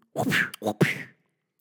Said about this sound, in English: Who are you punching in the face